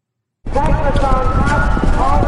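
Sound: horse hooves galloping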